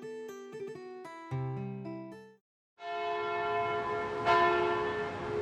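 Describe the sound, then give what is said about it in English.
A church bell rings for vespers in a quick series of strikes, falls briefly silent, then resumes with a full, sustained peal whose overtones hum and linger. No one speaks. “One hour ago, the Vespers bell rang.”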